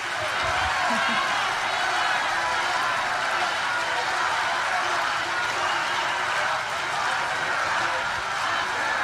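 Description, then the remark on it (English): A large crowd cheers and chants "lock her up" in 2023, many voices blending into a loud, steady roar that holds without a break for about nine seconds. “They are literally cheering, lock her up, dude.”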